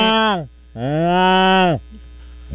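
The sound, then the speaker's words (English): A person imitates a cow with two drawn-out moos, a short one followed by a longer, steady one, loud, with a faint hum underneath. “I do a good cow.”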